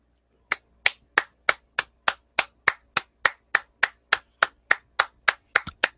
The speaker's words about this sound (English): I have no words. I'm just clapping.